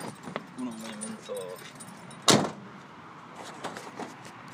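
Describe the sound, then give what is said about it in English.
Car keys jangle in short metallic bursts, with one sharp, louder clack partway through as the car is locked. Faint voices murmur in the background. “He's locking up the car now.”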